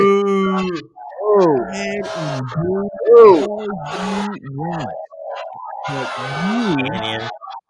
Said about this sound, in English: Oh, come on. God. I'm booing that. I'm booing it.